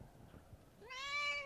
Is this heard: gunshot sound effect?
no